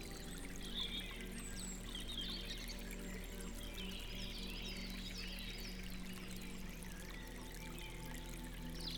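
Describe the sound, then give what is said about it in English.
A flowing stream of clear water, winding through a forest over smooth pebbles and soft mud, murmurs steadily and evenly throughout, with scattered faint bird chirps rising above the continuous watery rush. “The sound of the flowing stream was calming.”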